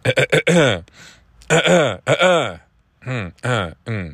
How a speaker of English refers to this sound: That's clear my throat. I'll just do it like a bunch of times to seem like I'm nervous, but I'm not.